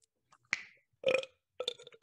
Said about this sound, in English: Oh, like my burping? Yeah, it's my mating call. I just burp myself.